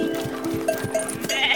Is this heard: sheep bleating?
yes